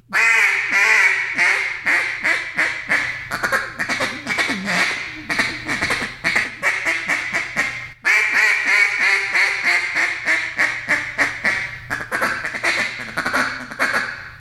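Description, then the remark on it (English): Imitated hen mallard calling, loud: a drawn-out series of raspy quacks of the boss hen call flowing into a rapid, chattering feed call, with the sequence repeating after a short break. No speech. “And just goes from that boss hen back to the feed call.”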